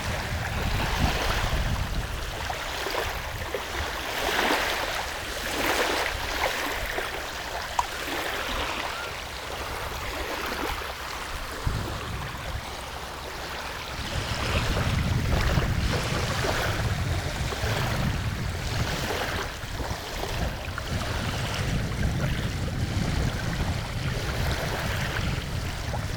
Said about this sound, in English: I'm coming closer to the shore, and I want you to bring that place to mind. Bring that memory of a special shoreline, a special sea or ocean to you as you listen to this sound.